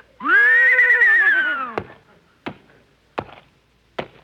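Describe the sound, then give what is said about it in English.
A horse, asked how much is 2 and 2, gives a loud, wavering whinny for over a second, then four sharp, evenly spaced knocks like hoof taps follow, with no one talking. “Okay, tell me, horsey, how much is 2 and 2?”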